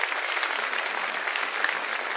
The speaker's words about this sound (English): Thank you. And I'd just like to invite one more round of applause for Robert Rosenkrantz for making this happen.